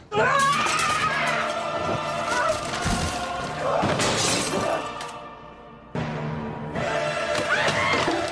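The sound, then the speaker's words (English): Objects are thrown during a tantrum, crashing and shattering in a loud, continuous jumble of breaking glass and heavy thuds, with several sharp smashing bursts and raised voices, including a child's, mixed in throughout. “She's like, whoa, and she's like throwing everything and like roar, slow motion yelling and knocking kids down.”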